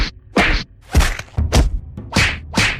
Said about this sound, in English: I need that wood. I guess I'm punching some trees.